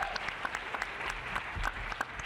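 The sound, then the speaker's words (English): Audience applause for Adrian Lever, political director of Swing Left, at a panel event: a steady wash of many hands clapping at moderate loudness, dense and continuous with no voices standing out. “Let's give her another round of applause.”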